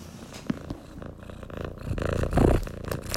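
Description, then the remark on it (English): A cat purring loudly while being gently caressed, a steady rumbling drone that swells in waves with each breath, with a few soft clicks and rustles over it. “He's purring so loudly. It's pretty loud. I hope you guys can hear it.”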